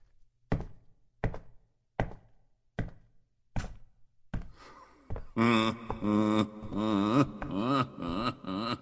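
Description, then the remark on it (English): Six firm, evenly spaced knocks on a door by a gentleman visitor ring out one after another, then a loud, warbling voice takes over for the last few seconds. “Get the door, please, and show the gentleman in.”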